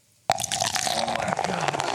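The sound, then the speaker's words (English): Soda pours abruptly into a glass in a steady splashing stream with a bright fizzing crackle that continues for almost two seconds, with no voices. “Could you hear that when you were pouring?”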